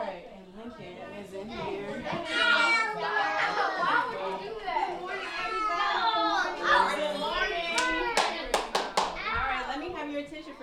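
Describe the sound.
A crowd of children at a party shriek, chatter and shout over one another in a steady, loud din of high overlapping voices, with a few sharp hand claps near the end.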